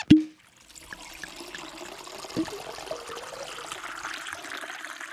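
A sharp ringing clink, then a steady stream of liquid splashing down like urine pouring, with a second clink midway. The trickle stays close and constant, with no talking.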